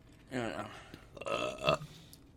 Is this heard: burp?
yes